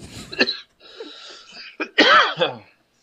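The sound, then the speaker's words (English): A person coughs and clears their throat in a few rough, sputtering bursts, ending in a longer strained, voiced hack as if clearing water from the throat. “Still got a little water in your throat?”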